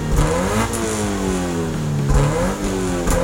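A car engine revs hard, its pitch climbing through gear shifts, dropping, then climbing again in a loud, continuous run with no one speaking.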